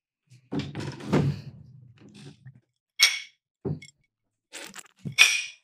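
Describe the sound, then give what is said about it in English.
A phone drops, clatters and breaks: a series of sharp knocks and dull thunks, loud and irregular, with brief quiet gaps between the impacts and no talking. “My phone broke.”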